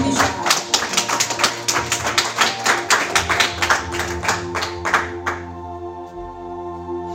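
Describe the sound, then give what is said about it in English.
A group claps in a steady, quick rhythm for about five seconds, then the clapping stops, leaving a sustained musical hum behind. “Oh, you see, you couldn't clap your hands.”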